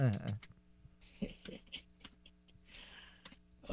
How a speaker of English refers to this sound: What are you Googling over there? What am I Googling? I hear the keys, the tappy tap tap. The keys.